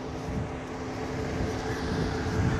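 A car that someone left running idles outside with a steady, low droning hum and faint tonal whine, holding an even loudness throughout with no voices over it.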